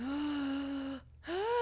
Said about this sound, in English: Gasp. It's outrage.